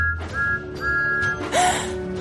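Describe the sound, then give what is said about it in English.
The whistle of Thomas the steam engine, heard at Tidmouth Sheds at night, sounds two steady, high-pitched blasts, the second longer, followed by a brief rising whistle and a burst of hissing steam, fairly loud. “Then Percy heard a familiar whistle.”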